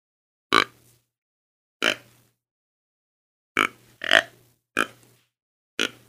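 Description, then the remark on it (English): A person imitates an aggressive young buck deer, about two years old, pushing a doe around, with six quick, throaty grunts, each short and sharp, spaced irregularly with two nearly back to back, alone against silence. “an aggressive young buck, like a two-year-old, how they would do”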